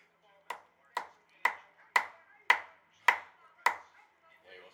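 Loud knocking: seven sharp, hard raps in a steady, even rhythm about half a second apart, each with a brief ringing decay, followed by a faint trailing sound.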